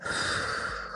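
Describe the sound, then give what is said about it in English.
A breathy rush of air during a deep-breathing exercise: a deep inhale through the nose shifting into a steady exhale, as if blowing out a candle, heard alone with no talking. “Just taking time for yourself so you can, like they say, when you are doing your deep breathe exercise, that you sniff the flower. So you smell the flower and then you blow out the candle.”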